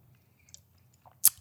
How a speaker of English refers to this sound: almost like buttery because I can taste the oil. Very buttery. I love it. That's a great chip. That great is crunchy, chip. Salty, and buttery. Exactly what you want in a like plain kettle chip.